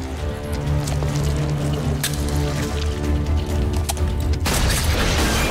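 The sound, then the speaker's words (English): Rapid bursts of machine gun fire in a movie, from the character Cherry's machine gun leg, crackle over a loud, dense mix with a low sustained musical drone, the barrage growing harsher and more continuous toward the end. No one speaks. “And this is where we finally get to see the machine gun leg.”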